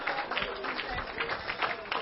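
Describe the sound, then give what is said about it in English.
A room full of people clapping their hands to praise the Lord, a dense and steady patter of applause that stays loud throughout, with some voices mixed in underneath. “Clap your hands all over this room and let the Lord know what you think about him.”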